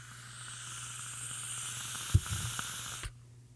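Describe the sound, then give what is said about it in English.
Vape coil crackling through a steady airy hiss of a long drag taken at turned-down wattage, with a few sharp pops late on, before the sound cuts off abruptly after about three seconds. “You can still hear that crackle, baby.”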